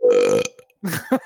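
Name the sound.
burp into the microphone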